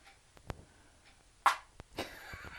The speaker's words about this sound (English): A little fart there.